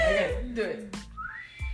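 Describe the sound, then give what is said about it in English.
A feeble human whistle attempt, thin and breathy, ending in a short rising tone, mixed with voices and soft laughter-like sounds. “That weak ass fucking whistle.”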